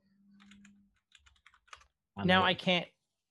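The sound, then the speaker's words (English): A quick burst of clattering keystrokes on a computer keyboard as someone quickly looks something up, fairly soft, followed by a short, loud vocal sound from someone. “the furious typing.”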